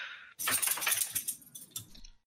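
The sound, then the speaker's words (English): A dog shakes itself off, its collar tags jangling in a rapid, bright metallic rattle for about two seconds, briefly pausing before a final few clinks, with no talking. “Oh, my dog shook.”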